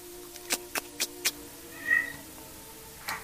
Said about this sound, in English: He shouts again, and it sounds like a cat, but it's them. I swear to God, it's them. They're so crazy, they just meow at people. They don't even know how to scream intimidatingly. So he whips his club back and says, meow!